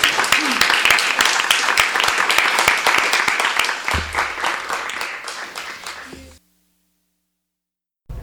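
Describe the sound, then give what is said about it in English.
An audience at a Skylight Books author reading bursts into sustained applause for the guest poets, a dense crackle of many hands clapping at once, holding steady for about six seconds before cutting off abruptly into silence. “Let's have a round of applause for all of them.”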